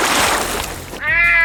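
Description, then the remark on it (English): A burst of splashing, rushing noise gives way to a single loud, drawn-out cat yowl with clear harmonic tones, prominent, lasting the final half second. “And speaking of cats, a Florida woman is facing charges for allegedly tossing her ex's cat into a river.”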